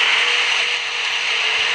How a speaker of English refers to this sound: to get rid of the creepy humming sound that comes from San Francisco's Golden Gate Bridge when the wind blows. Now, it all started when slats were installed under the handrails. And here's what that sounds like, in case you've never heard it before.